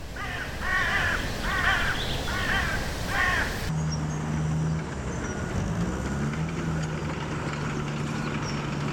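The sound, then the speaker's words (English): Several harsh, cawing calls from birds flying overhead under blue skies in wilderness repeat in quick succession over an outdoor background, then cut off abruptly, giving way to a steady low engine drone. “Blue skies, birds flying overhead, pristine wilderness.”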